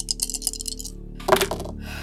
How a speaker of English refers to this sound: So I will do that, and adding the last extra boost die for my Rift Ninja sneakers that I have anyway, so I'll be rolling 3d6 with that kick from the dare.